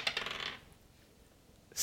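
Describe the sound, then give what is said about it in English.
Dice, rolled for an animal handling check in a tabletop game, clatter and rattle across a hard surface for about half a second, then go quiet, with one more sharp clack right at the end. No one speaks. “So I roll animal handling? Yeah, roll an animal handling.”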